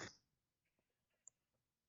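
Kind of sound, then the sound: human body sound, man coughing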